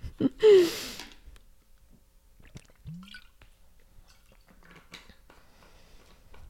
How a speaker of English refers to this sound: I'm gonna give you like 30 seconds to do so while I chug some water, because it's been 30 minutes. I gotta hydrate the hot pot again.